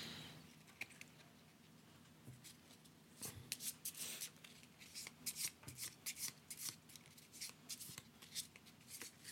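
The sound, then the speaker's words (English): A deck of playing cards being shuffled before dealing for a one-word-clue party game, a quick run of crisp, riffling bursts and soft slaps repeating, with no talking over it. “All right, I'm shuffling the cards.”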